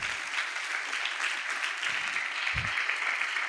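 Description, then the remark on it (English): An audience applauds for Jesus during a sermon, a dense continuous wash of many hands clapping at once, fairly loud and sustained throughout with no pauses, plus a couple of low thumps partway through. “Put your hands together for Jesus. You are helping somebody. Keep clapping.”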